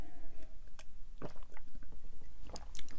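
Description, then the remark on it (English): Someone drinks orange juice, with a series of wet gulps and swallows and faint liquid slurping sounds at an irregular pace, no talking. “One of the main things, speaking of water, hang on, I must have it. This is orange juice, by the way.”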